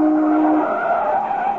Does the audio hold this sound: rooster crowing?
no